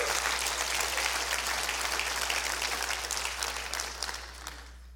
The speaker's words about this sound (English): Clap your hands and rejoice over that right now.